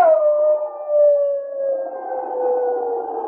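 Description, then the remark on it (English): A man imitates a shrill wolf howl: a long, sustained, high wavering tone gliding slowly downward and holding steady for several seconds, loud, with no other sounds. “Then he set fire to the pine branch, waved it over his head, and at the same time gave voice to a shrill wolf howl.”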